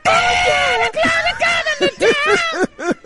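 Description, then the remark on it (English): A voice mimics a singer's raspy, strained screaming, one long wailing note followed by a string of short, choppy yelps, loud with no other talk. “He just screamed too much back then. Yeah, there's a bit of that. That's exactly what it sounded like.”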